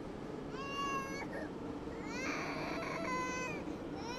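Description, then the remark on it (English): A toddler cries in two long, wavering wails, fairly loud, over a steady low rumble of a moving subway car. “Watching someone cry in public can be uncomfortable, but it's the perfect invitation to share your own pain.”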